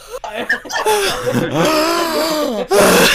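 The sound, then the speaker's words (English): A voice lets out a loud, drawn-out, exaggerated mock yawn, its pitch swooping up and down for a couple of seconds, with a short breathy burst at the end. “Well, who yawns like most people yawn calmly.”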